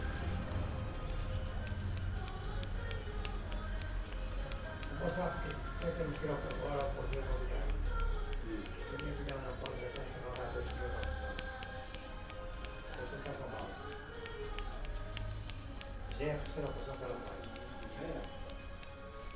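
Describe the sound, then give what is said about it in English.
Rapid, steady scissor snips as a barber cuts hair in an old style using two scissors, crisp, running nearly nonstop over a low background hum and faint indistinct voices. “there's this barber and cutting hair in this some kind of old style. I don't even know. We didn't research. With two scissors, right?”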